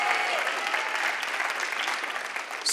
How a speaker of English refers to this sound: Okay, if you didn't just clap then, give God a clap right now. I'm telling you that right now. I don't care if you don't want to. God's worthy of your clap right now.